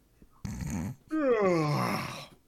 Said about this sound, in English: I let out a bored yawn.